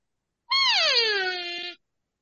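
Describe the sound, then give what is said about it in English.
A single drawn-out elk call imitating a cow in heat: a loud, nasal mew that starts high and slides steadily downward in pitch over about a second, with no talking. “Oh, that's a cow in heat.”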